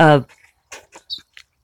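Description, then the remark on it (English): Someone chokes on a sip of coffee: a strained, voiced gasp, then a few short, harsh coughs and sputters spaced irregularly, with brief pauses between them. “Now I'm choking myself. Not a soothing sip of coffee, but a choking sip of coffee.”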